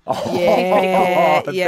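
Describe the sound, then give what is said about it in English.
A person imitates a cow's moo: one long, loud, wavering vocal note held for more than a second, with a brief dip near the end before it trails on. “Yeah, well, I've got a cow whose name is Myrtle Kardashian.”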